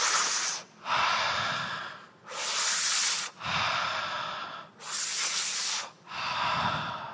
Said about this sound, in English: I want you to breathe in and out really deeply 5 times. Ready?